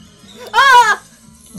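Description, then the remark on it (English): A single loud, wavering goat bleat lasting about half a second, nasal, with quiet background before and after. “More goats.”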